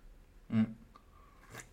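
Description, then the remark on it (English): Someone sips coffee: a short throaty gulp, a faint thin tone, then a breathy, airy slurp, all quiet and with no talking. “Sorry, coffee. I don't want my coffee to get cold, so I'll just take a sip in between.”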